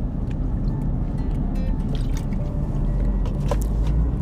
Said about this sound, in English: Excuse me, I took a sip of some water.